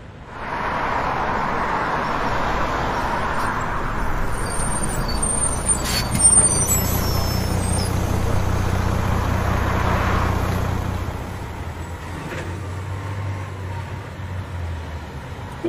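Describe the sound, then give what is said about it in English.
A bus idles with a deep engine rumble while a sharp pneumatic hiss bursts out as the bus's back door opens, followed by steady engine noise and fainter clunks as the hiss fades. “The back door of the bus opens. Bus captain steps out of the bus and deploys the ramp.”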